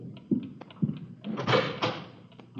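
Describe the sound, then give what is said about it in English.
A door being opened: two sharp latch clunks, then a longer scraping, rattling sweep as it swings open, fairly loud and with no one talking. “Okay, I'll cover you. Open it.”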